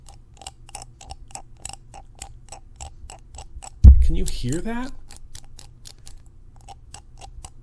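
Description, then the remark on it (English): A crunchy button on a copper Aria Z is pressed over and over in a steady, quick rhythm, each press a sharp click. A man briefly speaks partway through while the pressing continues. “And then I started crunching this button down.”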